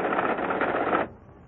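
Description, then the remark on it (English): A computer-driven typewriter rattles out a printout of a customer's information, after the customer's code number is dialed, in a fast, continuous mechanical clatter lasting about a second, then cuts off abruptly into quiet. “And in practically no time at all, the computer prints out on this typewriter everything we need to know.”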